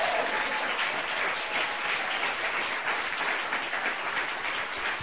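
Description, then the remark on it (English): An audience claps their hands together in sustained, dense applause as a hand clap of praise to Jesus, a steady wash of many hands at a fairly loud, even level for several seconds. “Why don't you put your hands together, give Jesus one more hand clap of praise.”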